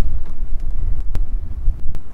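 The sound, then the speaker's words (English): Loud, rumbling wind buffets a windscreened microphone on a sailboat deck as the person holding it walks forward along the starboard side, a steady low roar with sharp gusty thumps and brief clicks breaking through; no one speaks. “But get ready for some wind noise, because I think I'm going to stand up and take a tour around deck and see what we can see.”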